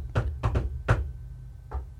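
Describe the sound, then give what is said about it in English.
A secret knock rhythm on a hard surface in an uneven pattern: a quick double knock, a pause, another knock, then a softer final one, moderately quiet. “like a secret knock”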